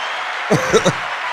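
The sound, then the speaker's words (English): Three quick hand claps in an uneven rhythm, sharp and fairly loud, standing out over a steady background hiss. “Claps.”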